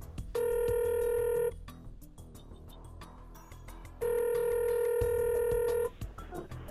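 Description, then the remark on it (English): Two long electronic ringback tones heard through a phone line, each lasting over a second with a pause between, steady and fairly loud over a faint background hiss. “we'll give him a call and see what the hell he's up to and see if...”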